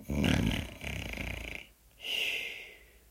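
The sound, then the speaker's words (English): Deep, rumbling snoring of a giant, loud: a long, rattling inhale snore, a brief pause, then a second, breathier snore on the exhale. No talking. “With a grunt, the giant closed his eyes and began to snore.”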